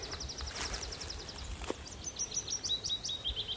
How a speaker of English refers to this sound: There's a willow warbler there, cascading.